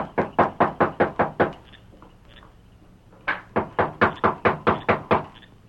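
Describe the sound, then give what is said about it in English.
Someone raps on a door at night in two quick bursts of about seven sharp knocks each, separated by a brief pause. The knocking is fairly loud, with no voices. “That's his room overhead. No knock.”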